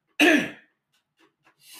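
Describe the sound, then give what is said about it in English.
A single loud cough with a rough, throaty edge, lasting under half a second, followed by a few faint small noises and a soft breath. “Here comes the cough.”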